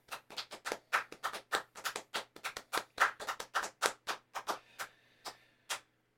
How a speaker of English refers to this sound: My hands are tired from clapping for you.